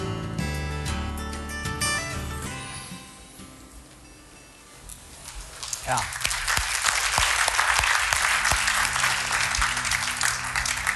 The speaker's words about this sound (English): You know, I know you guys are clapping for the video, but actually, can we give a hand for anybody that's volunteered for anything in this church?